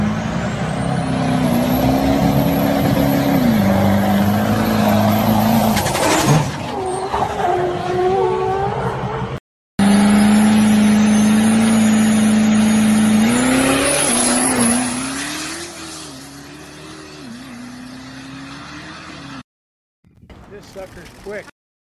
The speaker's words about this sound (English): I wish you could roll some coal on that. I'm sure it's going to, too. I'm pretty damn sure that there's some coal rolling going on. I think you need to play that truck again.